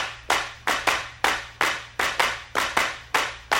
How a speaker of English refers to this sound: there's a clapping part in this.